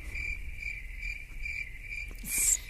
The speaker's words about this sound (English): Crickets.